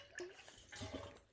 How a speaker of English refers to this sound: Just took a big sip of my sports drink.